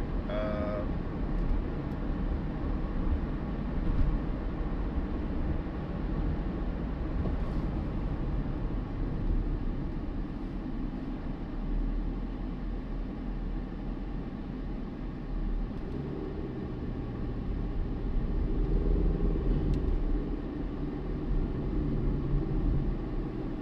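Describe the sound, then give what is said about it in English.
A steady, low engine rumble from an Amazon delivery truck idling while parked to deliver a package, droning continuously throughout with a slight swell toward the end and no voices. “Looks like the Amazon truck either run aground or no, he's just parked there for the time being because he's delivering a package.”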